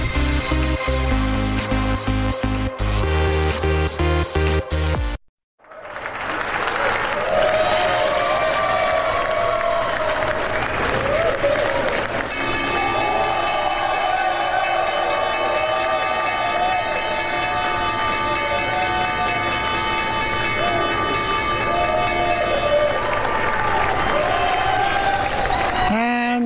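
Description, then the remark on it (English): The opening bell of the New York Stock Exchange on Wall Street rings steadily for about five seconds to start the trading week, then after a brief pause a crowd erupts into loud, sustained applause and cheering with excited voices mixed in, continuing to the end. “The opening bell has rung and trading begins on the New York Stock Exchange and on all the major markets in New York.”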